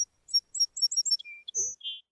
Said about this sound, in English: little bird flew to the highest branch of the tree next to Mary and sang as loud as her little voice could sing